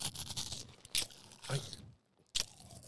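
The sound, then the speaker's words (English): Loud crunching of a snack being chewed for an ASMR recording, with sharp brittle bites landing about every half second amid a steady crackly rustle and a brief quiet gap near the end. “They like when you smack.”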